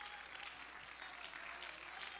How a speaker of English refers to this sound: Somebody ought to clap your hands and worship the Lord.